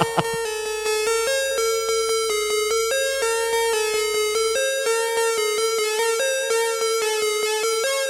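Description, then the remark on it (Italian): A mobile phone ringtone, mixed into a DJ set, plays a bright, electronic melody of quick repeating notes, loud, running steadily for several seconds with no voices. “Mixiamo il telefonino.”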